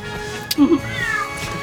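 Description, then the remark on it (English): A female cat meows, a short two-part call with a rising, wavering tone, followed by a faint higher mew trailing off over a soft background hum. “Thank you, Kitty. She heard me mention the litter box.”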